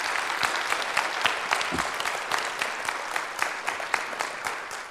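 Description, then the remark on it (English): Steady audience applause for children who had been up front, many hands clapping at once, a dense, even patter of sharp claps holding at a fairly constant level throughout, with no voices rising above it. “Before I get started, or as I get started, one of the first things I want to do is to, number one, give all of these kids one more round of applause for being up here.”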